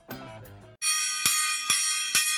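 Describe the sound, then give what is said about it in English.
A gong is struck and rings with a bright, shimmering sustain, then is hit three more times at steady half-second intervals. Each blow swells the ringing, which follows a brief burst of tonal sound. “The sound of the gong, ladies and gentlemen, and that only means it is time for another episode of Hold the Sarcasm.”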